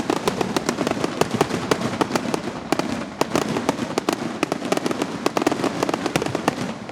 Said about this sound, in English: right now, they are putting up the finale for fireworks. So it's going to be loud temporarily as this is the finale.